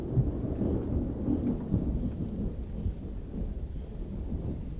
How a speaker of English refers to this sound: It must have been, when the lightning storms that they had, it must have been fantastic to be there and rather frightening.